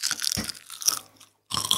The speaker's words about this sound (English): But it really is astounding how crispy they are. They're like kind of fat potato chips, really. Yeah. I'm going to eat another one. I am too. Let's crunch. Okay.